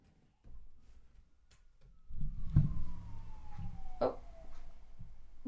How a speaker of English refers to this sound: The sirens, they're coming for us. Wait, is that from? It's no, not, that was out. That was ours. That was outside. Yeah, that was outside.